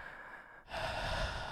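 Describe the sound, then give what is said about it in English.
A person imitates heavy breathing, a soft airy inhale followed by a louder, longer rushing exhale with no speech. “the ASMR of heavy breathing”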